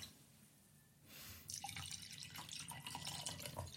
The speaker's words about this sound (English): I'll pour a glass there.